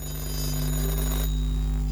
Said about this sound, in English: Hey, your phone's ringing.